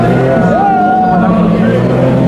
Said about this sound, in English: This is the 911 RSR. Forgive me. They're putting them through a heat cycle by the sound of things. Testing systems. That's a raw sound. This one's in the DMP Mori colours. Porsche Motorsport GT team, Bamba, Pile and Tandy's car.